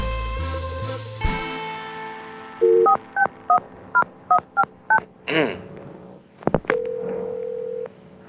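telephone touch-tone dialing

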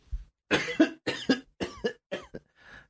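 cough

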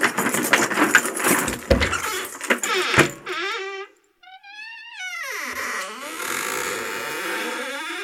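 keys jangling

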